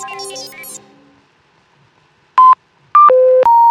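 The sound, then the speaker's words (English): A phone is being dialed to call a man, and the call goes unanswered: after a short tonal sound fades into quiet, a single keypad beep sounds, then a quick run of steady electronic tones at shifting pitches, clear. “I think I might just try his phone.”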